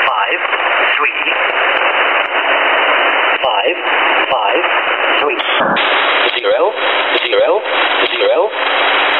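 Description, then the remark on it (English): A harsh, static-filled radio broadcast with band-limited hiss, buzzing interference and wavering tonal sweeps, a number station sound played loudly and continuously from the Jammer Generator phone app held up to a microphone. “There's the famous number station generator.”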